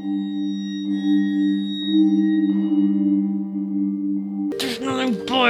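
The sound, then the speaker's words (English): A steady, low humming musical tone holds for several seconds, then a loud gong is struck, bursting into a bright, shimmering crash that rings out over the fading music. “The music. Then a gong.”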